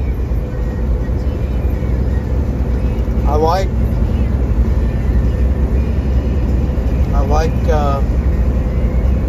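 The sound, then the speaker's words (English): A semi truck engine drones loud at highway speed, around 65 mph, a steady low rumble with road noise throughout, broken twice by brief high, wavering squeals. “I like the sound of it. I like the feel of it even. Right. Now we're up to 65.”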